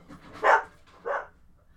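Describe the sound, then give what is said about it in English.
A dog named Lacey, the speaker's fiancé's dog, barks twice, two short separate woofs about half a second apart, moderately loud, with no talking over them. “Well, I've just found my fiance's dog.”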